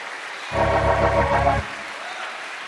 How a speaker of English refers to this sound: Clap your hands for space.